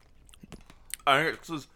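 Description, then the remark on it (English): Soft crunching of someone chewing crunchy frosting sprinkles, a handful of faint irregular clicks over about a second, followed by a louder voice speaking. “I can hear me chewing the sprinkles.”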